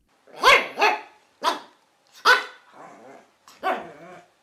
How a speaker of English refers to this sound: Yes, that's right, it's a dog.